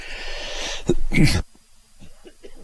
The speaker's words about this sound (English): Sorry about that, I had to cough.